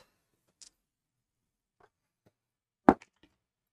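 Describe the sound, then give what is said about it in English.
Dice are rolled for initiative and clatter onto a table: a faint early click, then a loud sharp impact around three seconds, followed by a few quick, quieter bounces and rattles settling, with no voices. “With that, we're gonna roll initiative.”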